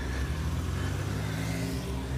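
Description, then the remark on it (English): A car engine hums steadily at moderate volume, its low rumble holding even throughout with a faint rising whir as the car pulls away and turns into the grounds of an apartment block. No voices. “and made their way back to their car. I watched from the cover of the trees as it turned into the grounds of an apartment block.”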